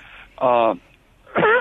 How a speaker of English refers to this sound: excuse me, cough there.